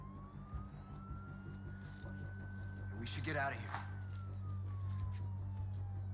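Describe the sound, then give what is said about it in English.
An emergency vehicle siren drones steadily, its pitch slowly climbing then sinking as it draws near over a low rumbling hum, while a voice speaks briefly partway through. “It's not an ambulance, is it?”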